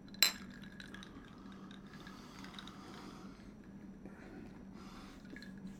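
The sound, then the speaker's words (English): A single bright clink of glasses touching in a toast rings out near the start, crisp with a short ringing tail, then only a quiet hum remains. “this stuff right here is dangerous because it goes down very smoothly. Tom, cheers.”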